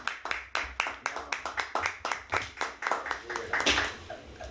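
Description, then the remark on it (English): A crowd claps together as a clap offering to the Lord, a steady burst of sharp, rhythmic hand claps, fairly loud, with some voices faintly mixed in near the end. “All the time, give the Lord another clap offering. Give the Lord a clap.”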